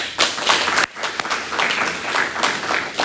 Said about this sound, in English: Will all in favor of electing them please applaud?